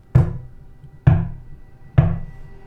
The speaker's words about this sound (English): One night, you're cuddled up cozy on your couch, listening to your favorite podcast, reading a good book, watching Mindhunter, and there is a knock on the door.